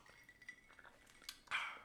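Someone gulps down a drink from a glass, with soft swallowing sounds followed by a brief rushing burst and a sharp clink of glass at the end. No one speaks.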